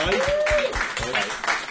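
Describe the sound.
A burst of audience applause for a contestant who took part in a video game sales quiz round: a dense, steady patter of many hands clapping at moderate loudness, with a rising-and-falling whoop and murmuring voices mixed into the crowd noise.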